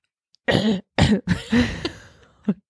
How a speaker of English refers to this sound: I tried to cough.